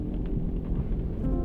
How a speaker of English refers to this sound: Oh, wonderful. Now it's started to rain. You like the rain. I do like the rain.